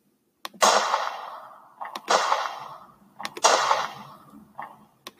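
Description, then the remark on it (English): Three loud gunshot effects ring out at a steady pace, each a sharp crack with a short click just before it and a fading, echoing tail. No one speaks. “Yeah, let's get some gunshots for that.”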